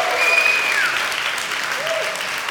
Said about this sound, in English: So praise you, Jesus. We're so grateful for 6 years. Come on, let's give a cheer and a shout. Thank you, Lord.